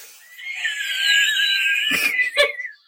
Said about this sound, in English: Oh no, it's just my cat's very like noisy and she likes to let everybody else in the house know what's going on.